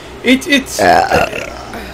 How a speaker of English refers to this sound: Yes, it's that. It's a burp.